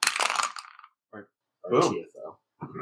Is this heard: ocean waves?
no